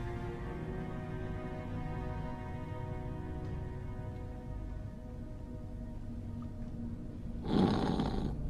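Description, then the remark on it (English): A man snores while asleep: a low, rumbling snore drones steadily through the whole stretch, moderately loud, ending with a sudden harsher, breathier burst. No one speaks. “He's snoring.”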